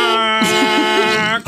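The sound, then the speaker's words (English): A voice mimics a car horn with one loud, sustained nasal blare at a steady pitch, wavering slightly, lasting over a second before cutting off abruptly. “And Tina's just going to, like, honks the horn.”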